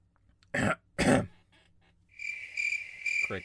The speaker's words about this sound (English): I edited in crickets there.